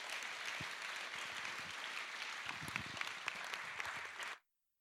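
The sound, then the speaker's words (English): A crowd applauds steadily as a speaker comes up to speak, a dense wash of many hands clapping at an even level for about four seconds before cutting off abruptly into silence. “So please give him a round of applause as he comes up this morning.”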